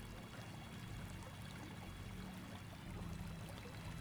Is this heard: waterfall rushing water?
yes